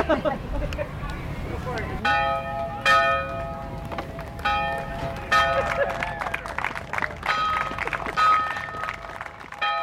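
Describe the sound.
A bell rings out at the start of a parade in a series of loud, resonant strikes, each tone lingering before the next, over a busy background of crowd murmur and indistinct voices.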